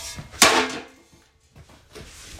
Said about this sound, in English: He slammed my stick in the door.